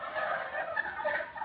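A healthy-looking turkey, a raffle prize, gobbles in a rapid, continuous burble of warbling calls, fairly loud, heard alone without any talking over it.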